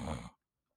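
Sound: voice imitating loud snoring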